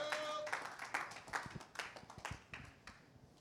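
A round of applause: many hands clapping in a dense, irregular patter, fairly soft and steady throughout, with no one speaking.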